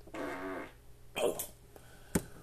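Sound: fart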